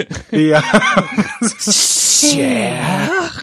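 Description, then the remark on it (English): A voice makes a drawn-out, breathy snake hiss, about half a second long, framed by strained, exaggerated vocal sounds before and after. “That sounds like a mutant snake.”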